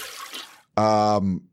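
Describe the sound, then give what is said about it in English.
A toilet flush sound effect: a short burst of rushing, swirling water fades out after about half a second, then a loud, harsh buzzer tone sounds briefly. “I have this. Toilet flush.”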